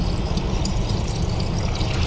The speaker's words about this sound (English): Drinking water. Water spilled.